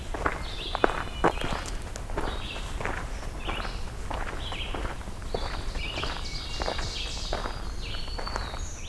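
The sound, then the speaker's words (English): Songs of an ovenbird and a black-throated green warbler ring out repeatedly in the Allegheny National Forest, layered over steady crunching footsteps walking through leaf litter. “Oven bird and black-throated green warbler again.”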